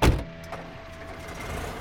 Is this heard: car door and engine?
yes